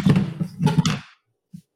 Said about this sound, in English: No, it was Oreos fell, and he freaked out. He had to get the Oreos before. Oreos fell on my Doritos.